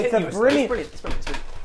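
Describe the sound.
A wooden chair cracks and clatters as it gives way beneath someone, a quick burst of creaks and thuds close by, preceded by a startled voice and laughter.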